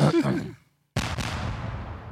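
In a video, a man tries to kick a horse: a short, wavering horse whinny, falling in pitch and lasting under a second, then a brief silence before a burst of rough, noisy rustling with a sharp knock.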